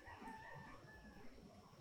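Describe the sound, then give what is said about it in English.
A rooster crows once in a drawn-out, wavering call, fairly faint, over a low rumbling background with no one talking. “That rooster was perfectly timed.”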